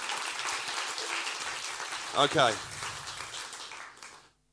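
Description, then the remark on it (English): A church audience claps steadily for about four seconds for two people being welcomed to the church, a dense patter of many hands that fades out at the end, while a voice briefly speaks over it partway through. “You're going to give them a clap then, won't you do that?”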